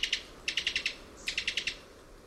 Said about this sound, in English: This staccato call comes from the throat of a Cuban toady.